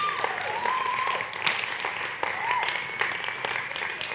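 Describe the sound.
An audience applauds steadily for about four seconds, a dense wash of many hands clapping at even loudness, with a few whoops and cheering voices rising over it.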